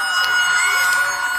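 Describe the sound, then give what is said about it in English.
A steady, reedy drone with bright sustained pitches from bagpipes, played by a musician as he walks across the stage at a live show, sounds loudly throughout while bursts of crowd cheering and noise rise over it. “He just walked across the stage with this bagpipe in his hands. I'm sorry about all the cheering and such in the background that you can also hear.”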